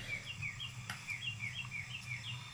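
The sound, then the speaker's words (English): Small birds chirp in a steady series of quick, high tweets, fairly soft, over a low continuous background rumble, with no one speaking. “Oh, and some birds chirping.”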